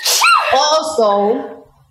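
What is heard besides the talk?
sneeze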